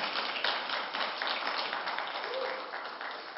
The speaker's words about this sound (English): So on this Father's Day, dudes, I want you to clap for the ladies who keep this church going. Thank you.